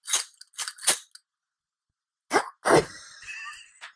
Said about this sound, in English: Okay, so my next object is this jar of coins. Poor person's jar.